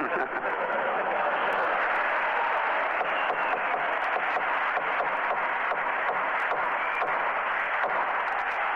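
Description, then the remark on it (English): Sustained applause from an audience in a hearing room during witness testimony, a dense, steady wash of many hands clapping at once that holds at an even level throughout, with a few sharper claps standing out. “Audience will please refrain from applause or demonstrating their reaction to any testimony.”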